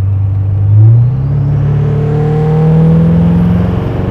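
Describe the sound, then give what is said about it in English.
A pickup truck's engine revs hard as the driver floors it in tow/haul settings and accelerates, its deep, loud roar climbing steadily in pitch over a few seconds, with no talking. “I appreciate you taking the time letting me drive your truck. I'm going to lean on it one more time here.”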